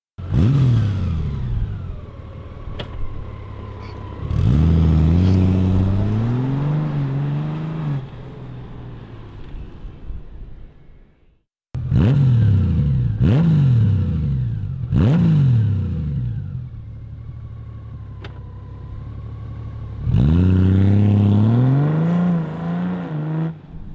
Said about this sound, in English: And this would be, this is from Two Brothers. So you're going to hear stock Goldwing takeoff and some new Two Brothers pipe that they just came out with.